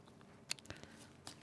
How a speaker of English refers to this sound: Ooh, I can chew this. That's what you have when you have a 6-month-old puppy in your house.